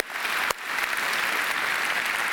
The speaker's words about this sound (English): Can we just give the Lord a big old round of applause this morning for what we celebrate, amen?